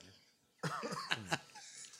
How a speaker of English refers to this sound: I've been having a cough. You were a little sick. Man, I was sick, compa. Really sick. And I've been having a bad cough